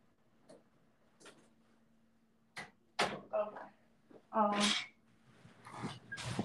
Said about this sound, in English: Let me hold on real quick. I gotta close my door.